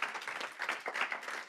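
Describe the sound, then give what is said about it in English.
An audience breaks into steady applause for every older person present, a dense wash of many hands clapping at once with no distinct individual claps, holding at an even level throughout. “So let's give a round of applause for every older person here.”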